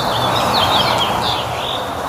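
Spring birds in the Austin, Texas area chirp and twitter in quick, high overlapping calls over a steady background hiss and low rumble, with no one speaking.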